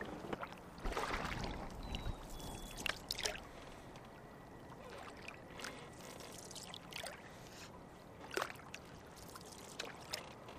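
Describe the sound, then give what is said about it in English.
Water sloshes and splashes around a tippy canoe, with hollow knocks and bumps as people get in one at a time, followed by intermittent paddle strokes dipping into the water, on Bubbly Creek by the South Branch of the Chicago River. “We should get in one at a time. And when you get in, you know, keep your center of gravity. Oh, let me grab those paddles.”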